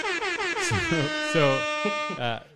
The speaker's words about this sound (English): I don't know if you knew about the air horn. The air horn is a bonus. Air horn is a bonus.